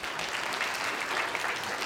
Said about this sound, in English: All right, give them a hand again. Just clap it up.